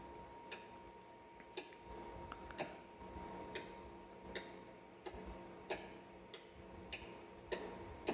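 Crisp, clicky taps from tap-dancing shoes in a tap-dance fight scene of a movie ring out in a loose, uneven rhythm, roughly a dozen sharp strikes over several seconds, set against a low steady hum with no talking.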